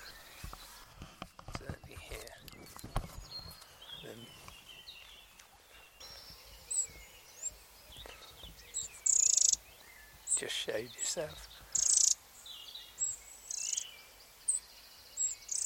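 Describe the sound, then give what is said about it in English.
Wrens in a hedge give short bursts of high, squeaky calls, repeated several times in the second half, while a man speaks briefly near the start. “Wren, code F out.”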